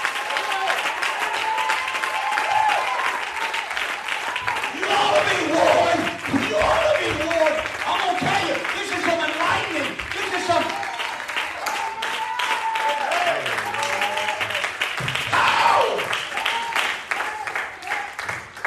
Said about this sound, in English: Clap your hands. All your people. Drive it home.